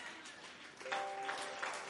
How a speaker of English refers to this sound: Hey, I didn't hear you. Clap your hands again and shout, Lord, give me long life.